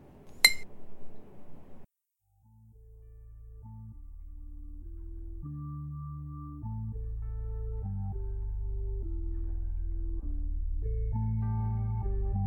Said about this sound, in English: Here, refill your glass. You're not leaving till this motherfucker's empty.